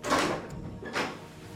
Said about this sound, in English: My character's in the study when the door opens.